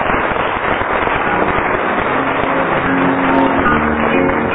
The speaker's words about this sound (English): For 11 years now, I've been trying to get a lady scorer, like all the other chairmen have sitting next door. And we have. Give her an actual round of applause.